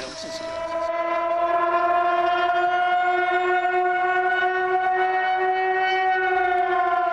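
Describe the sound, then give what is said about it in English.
A civil defense warning siren in San Francisco holds one loud, steady, rich tone for several seconds, its pitch sagging only slightly as it sounds alone without any talking. “That siren means only one thing in this town.”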